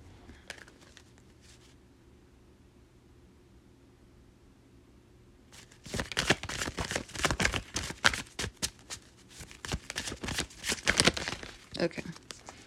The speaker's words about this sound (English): Let me just shuffle some cards. Maybe it'll come back.